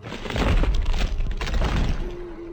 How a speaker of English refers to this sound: But he lunged forward and shattered the second insulator.